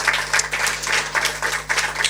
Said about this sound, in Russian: Еще раз аплодисменты